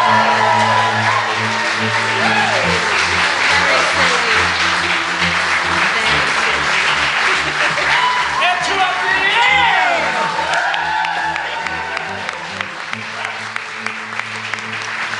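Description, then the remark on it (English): An audience claps steadily throughout for the players of the show Diceratops Presents Crit Me Baby One More Time, with cheers and whoops rising over the dense applause, which thins out slightly toward the end. “Some applause for our amazing players.”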